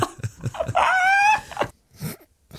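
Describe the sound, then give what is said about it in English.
Someone imitates a parrot: a few choppy, clipped vocal sounds lead into a loud, shrill, sustained squawk lasting about half a second, followed by a brief quieter utterance. “It's in my head, I was like, it sounds exactly like a parrot.”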